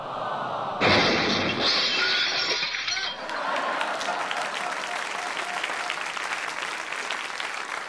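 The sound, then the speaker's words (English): A loud, heavy crash as a microwave, hurled at a dog, smashes, a harsh burst of breaking metal and glass lasting a few seconds, followed by a steady rattling clatter of debris settling. “Darling, that was the microwave.”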